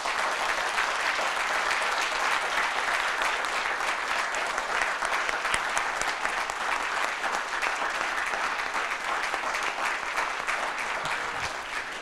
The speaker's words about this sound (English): So it's time to put our hands together. Let's go for it. Let's do it.